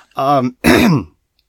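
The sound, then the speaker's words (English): A loud throat-clearing cough in two quick bursts, caused by dust in the throat: a voiced, rasping rumble followed by a harsher, breathy hack, then silence. “I've got some dust in my throat, so I'm going to be coughing for a while now.”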